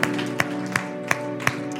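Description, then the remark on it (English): Steady, rhythmic hand claps in unison during a worship service, about five evenly spaced beats, ringing out over a sustained musical backdrop with held tones, as a crowd claps along together in gratitude to God. “One more time, let's clap our hands to him in gratitude.”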